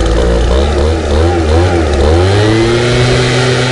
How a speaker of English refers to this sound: Okay, well, we got a little leaf blower sound here. Let's have a listen to it if it see if it sounds like a scream. Let's have a listen here.